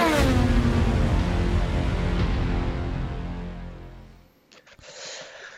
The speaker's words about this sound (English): Big engine noises. Clearly, that was the trailer. So the audio from the trailer, there was clearly a few big crashes there.